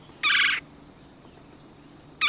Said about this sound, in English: As woodpeckers go, they're bold and conspicuous, thriving even in backyards and city parks east of the Mississippi. And red-bellied woodpeckers are unabashedly vocal. Some might say noisy.